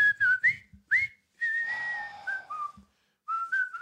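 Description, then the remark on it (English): A bright, clear whistled melody of a jaunty, march-like tune, whistled as prisoners of war march in, from a film directed by David Lean: short notes hopping up and down, then longer held tones, fairly loud with no talking. “Is that where that whistle comes from originally?”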